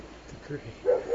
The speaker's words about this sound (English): Now, let's add another sensory component, because you're using your mind door. Does it feel different when you hear the dog?